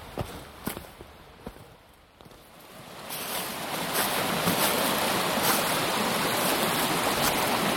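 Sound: flowing creek water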